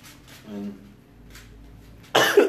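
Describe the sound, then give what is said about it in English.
A soft throaty rasp, then a sudden loud, harsh cough, like someone hacking to clear hair stuck in the throat after cutting hair. No talking. “So that's why I kind of, that's why you hear all the coughing and sniffling and stuff.”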